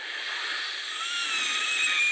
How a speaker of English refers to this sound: There we go. That's the whistle noise it makes. I ripped apart a piece of paper and I made a whistle out of that.